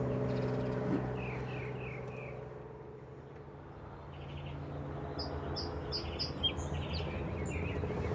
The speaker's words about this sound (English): Meanwhile, got mockingbird calling out, and I think that possibly is a song sparrow.